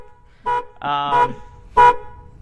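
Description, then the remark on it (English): A car alarm blares in short, repeated honking bursts with a longer steady tone between them, loud, with no one talking over it. “Did you hit the panic button by chance?”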